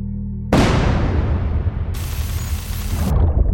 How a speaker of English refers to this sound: So basically, as the shellings and explosions are going on, the infrastructure can literally physically be breaking down, which can cause internet disruptions.